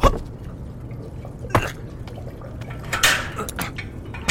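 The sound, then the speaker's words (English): Water trickles and drips from a garden water feature, with irregular splashy drips over a steady low wash of outdoor background noise, moderately quiet. “I don't like that water feature, though. It smells like mouthwash.”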